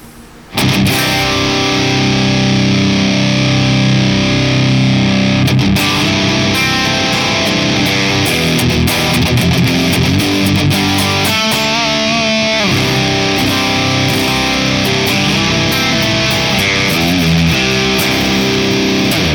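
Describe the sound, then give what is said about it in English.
A heavily distorted electric guitar plays a sustained, saturated drone through a Cortex amp modeler, thick and buzzy with dense harmonics, holding steady and loud for the whole stretch with no talking. “Here's the Cortex.”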